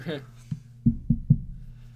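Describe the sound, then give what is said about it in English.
Knuckles rap on wood: one knock, then a quick run of three, dull and solid, just after a brief trailing bit of voice. “Knock on wood.”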